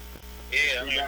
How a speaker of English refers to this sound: Gotta get a new one. These motherfuckers. These motherfuckers. That motherfucker's a buzzing, man.